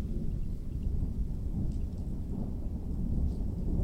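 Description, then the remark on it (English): A thunderstorm rumbles steadily with heavy rain, a dense, continuous low roar that stays fairly loud throughout, with no voices. “Does it feel like a storm building? Does the wind really start to howl? Does thunder and lightning start to begin?”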